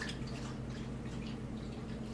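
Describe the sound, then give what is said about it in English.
A dog laps up water in a room in a steady, continuous stream of quick wet slurping sounds, with a low background hum underneath and no talking. “You can hear my dog drinking water.”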